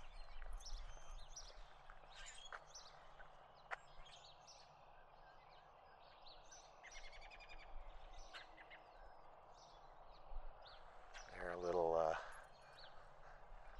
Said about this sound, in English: Oh, there's some robins. Let's see if they make some noise.